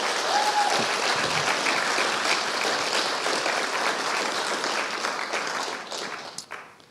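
A steady burst of applause from a crowd for the youth leaders and youth, dense clapping that holds loud and even for several seconds before tapering off at the end.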